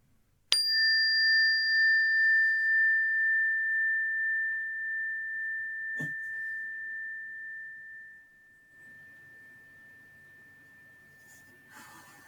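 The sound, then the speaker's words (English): A single meditation bell is struck once to close a meditation session, giving a bright onset and a steady, pure ringing tone that slowly fades over about eight seconds into near silence, with a soft breath heard partway through. “And now simply listening to the sound of the bell to close our meditation time.”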